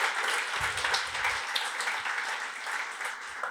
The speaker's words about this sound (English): Quick round of applause for those guys. So thank you.